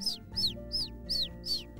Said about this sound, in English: opened the window and the bird flew right inside